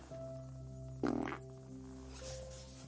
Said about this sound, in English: …, did you just fart?